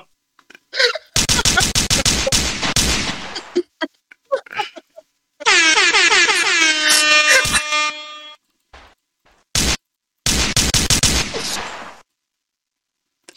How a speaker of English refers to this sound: Gunshots.